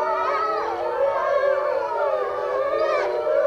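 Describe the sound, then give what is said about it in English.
A chorus of wolves in an enclosure howls in overlapping, wavering tones over a steady air-raid siren drone. The sound is continuous and fairly loud, with the voices gliding up and down throughout. No one speaks. “These regal beasts in an enclosure sounding a chorus of the wild to the tune of human war alarms.”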